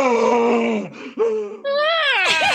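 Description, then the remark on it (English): A player imitates the loud rage scream of the satyr character Neem: a long strained vocal groan that breaks off, then a short cry and a rising, wavering howl, all harsh and sustained with no other talking. “So how does the satyr Neem rage? With a loud scream.”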